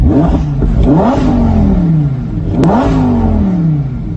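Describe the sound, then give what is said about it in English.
A powerful naturally aspirated V10 engine with no turbochargers, in a midnight blue car with a black convertible top, revs hard twice, climbing quickly in pitch with each blip before settling into a sustained high drone, loud with no talking over it. “So here's the thing you don't get with a lot of new cars is that sound, because this is still a naturally aspirated V10. There's no turbos or anything.”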